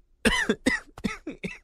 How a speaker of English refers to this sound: I'm coughing on my own spit.